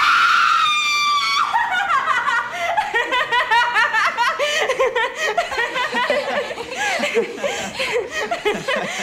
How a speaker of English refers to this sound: and she, like, just gasps, and it's, like, this very manic scream and turns into a laugh. I thought that was really funny.